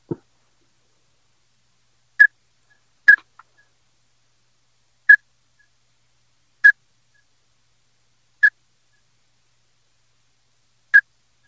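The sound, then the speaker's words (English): A pintail duck whistle call blown by a duck hunter during a hunt: about six short, high-pitched whistled peeps, sharp and fairly loud, spaced a second or two apart in an uneven rhythm, with no talking. “You hear I'm blowing a pintail whistle, but that's a confidence.”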